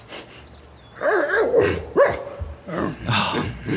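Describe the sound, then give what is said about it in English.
A dog barks in a few short, excited bursts with whiny, yipping tones, loud and alone, with faint background hiss between the calls; a hungry camp dog being offered duck meat. “Oh, that dog's so cute.”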